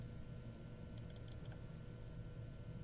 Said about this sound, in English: Somebody likes dice games. Roll the die.